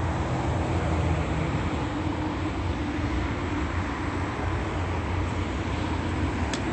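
A large Denesse Group Incorporated truck rumbles by, its deep, loud engine roar and road noise holding steady throughout, with no voices heard.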